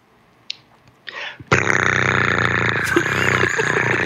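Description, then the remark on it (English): A person vocally imitates a cat with a loud, rough, drawn-out yowl lasting a couple of seconds, preceded by a few brief faint noises. “Is that your cat noise? It's my cat noise.”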